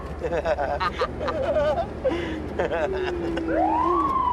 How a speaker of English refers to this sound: Did you turn the siren on?